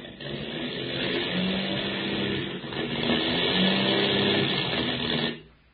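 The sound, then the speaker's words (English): A rough, droning airplane engine with motor trouble over the Indian Ocean runs loudly, falters briefly, surges back with uneven pulsing, then abruptly cuts out and falls silent, like an engine failing. “Hear that, Skip? We've got motor trouble.”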